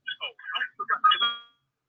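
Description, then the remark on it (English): A person's own voice echoes back through another device, thin and tinny like a phone line, in a quick run of syllables about a second and a half long that ends on a drawn-out note. “Oh, because I hear myself.”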